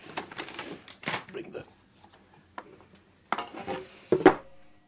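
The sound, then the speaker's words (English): A box of paper origami demonstration models, used in public lectures to show engineering uses of origami, is handled: irregular bursts of crisp rustling and light knocking, with quiet pauses between, ending in a louder clatter of shuffling paper. “I can't help noticing that there's a box here with some paper designs in. Just bring it out for me.”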